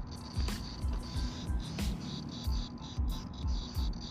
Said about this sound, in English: These mosquitoes are trying to come at me, really.